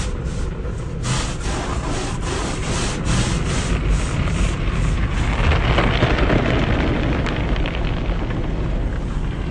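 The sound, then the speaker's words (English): Inside a car going through an automated car wash, water jets splash onto the car and brushes go around it, making a loud, steady rushing roar, with a regular series of slapping thumps during the first half before the noise settles into a dense, even wash. “I don't know if you can hear that, but that's the water jets splashing onto the car. Now we got the brushes going around us.”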